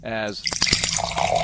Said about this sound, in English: Here's the glass filling up.